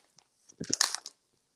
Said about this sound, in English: Enjoy sharing this delightfully crunchy treat with your family and friends. This is shrimp chips baked.